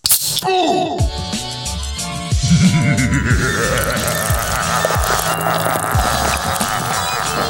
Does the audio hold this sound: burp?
yes